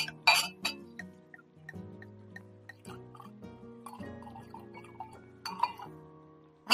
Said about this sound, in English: All right, let's, pour a little wine here.